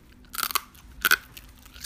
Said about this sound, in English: Wow, that is good. That is crunchy.